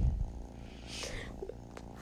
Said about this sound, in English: And this right here is my little kitty's purr.